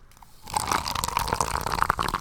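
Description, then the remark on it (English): Liquid pours steadily into a cup, a continuous splashing gurgle that starts abruptly after a brief moment of quiet and keeps running with bubbly fizz. “I'm going to give you a little bit so that you don't have to be punished.”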